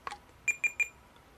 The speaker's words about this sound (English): it'll give you three beeps to say it's ended the recording.